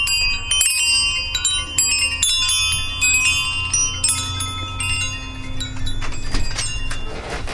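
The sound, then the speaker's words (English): Metallic wind chimes ring out continuously, with many overlapping bright tones struck in quick, irregular succession and lingering as they decay. The sound is fairly loud, with a low rumble underneath and no voices. “That is my tour of the wind chimes.”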